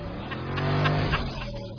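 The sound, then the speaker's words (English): A car engine drones and revs steadily with a low humming pitch that swells slightly mid-way, fairly loud, with some rumbling noise underneath. “Rewing continues. Oh, no. Is it all the cars?”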